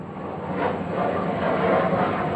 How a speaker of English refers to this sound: That's my new sound effect right there, y'all. Y'all hear that shit? Y'all tell me what type of jet that is. Y'all hear it?